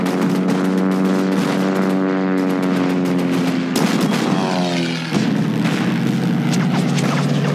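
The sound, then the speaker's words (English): A ship's guns fire at planes, loud, continuous gunfire crackling and booming, while a droning aircraft engine sweeps downward in pitch overhead, with a couple of heavier blasts midway and no talking. “Because it seems very easy for the ship to just knock the planes down.”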